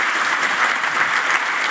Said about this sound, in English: Okay, great. Thank you. Mm-hmm. Thank you. All right, round of applause for that.